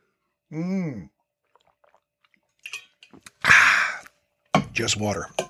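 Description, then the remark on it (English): Someone drinks water from a big screw-top water bottle with a U-shaped lid tether: a few small plastic clicks, then a short breathy rush of noise, framed by a voiced exhale at the start and a brief vocal sound at the end. “Sorry, I'm being careful because I got my big water bottle here, but it's got a giant screw top with like the little U-shaped thing that keeps you from losing the lid.”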